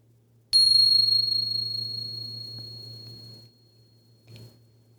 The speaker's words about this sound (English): Here comes the bell.